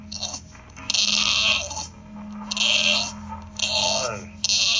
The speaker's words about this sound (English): His dog is acting weird. Which I wanted to ask you about. Dogs are weird. I understand that dogs are weird, but was that really a bulldog noise?